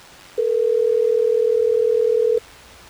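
A steady, unbroken telephone dial tone, as a phone call is placed, hums at one pitch for about two seconds, loud, with quiet background before and after and no one speaking.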